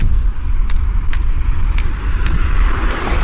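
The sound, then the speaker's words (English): Steady roar of passing cars on a busy street at a street corner, loud, with a constant low rumble and occasional sharp ticks and clatters over the road noise. “As you can hear, a little bit of traffic today.”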